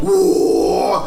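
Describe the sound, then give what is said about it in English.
A single loud, gritty vocal roar held for about a second, a raspy low growl in the style of a metal singer's guttural scream, with no other talk. “Well, then you should be able to do the guttural roar.”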